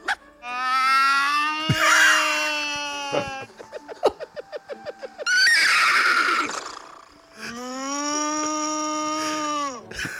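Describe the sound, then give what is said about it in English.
A woman's voice loudly imitates a horse, giving long whinnies broken by a rapid, stuttering burst. It ends with a sustained, drawn-out attempt at a cow's moo, all unaccompanied. “I mean, the cow at the end isn't very good, but the rest of them. That horse was very impressive.”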